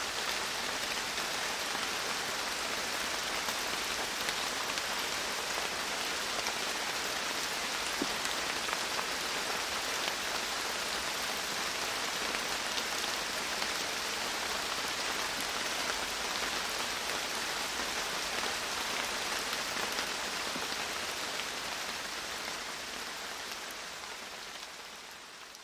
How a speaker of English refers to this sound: In situations like this, I knew I wasn't going to be going anywhere, so just needed to settle in and listen. It was me, the microphones, and the morning quarry rain.